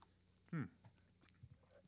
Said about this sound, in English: After I'm finished chewing this.